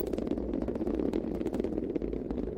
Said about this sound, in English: MR-3 finally lifted off at 9:34 a.m. Eastern Time. Shepard radioed. All right, lift off and the clock has started.